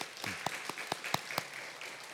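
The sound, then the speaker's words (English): Soft applause from a church audience welcoming newcomers: a steady patter of hands with a few sharper, evenly spaced claps standing out over a faint wash of clapping, lasting about two seconds. “A round of applause.”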